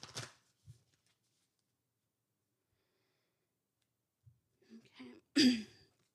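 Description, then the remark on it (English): A deck of oracle cards being shuffled: a short papery riffle, a long stretch of near silence, then a few quick rustling flicks ending in one louder burst. No one speaks. “let's go ahead and pull our first card. group one. What do we need to know? What do we need to know? Give me 1 second here. Let's shuffle.”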